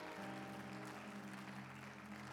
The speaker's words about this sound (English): Let's just give a hand for all our guests.